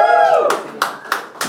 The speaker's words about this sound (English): Woo! Wow, what a... What a rousing applause.